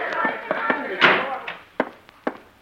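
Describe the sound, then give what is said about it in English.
A door swings shut with a solid thump amid a few softer knocks and clunks, while indistinct voices murmur underneath during the first second. “Shut the door.”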